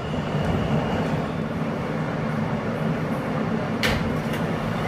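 A steady, loud rumble of a Brooklyn-bound F local subway train running via the E line between stations fills the whole clip, with a constant low roar and a brief metallic screech or clank near the end.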